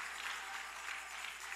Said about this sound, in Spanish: Dele fuerte ese aplauso al Señor con el corazón.